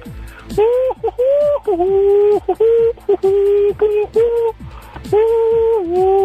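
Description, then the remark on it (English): A person's voice makes a long run of sustained, hooting calls in imitation of an owl, loud, each note held with slight pitch dips and separated by brief pauses. “Are you an owl now? Are you an owl?”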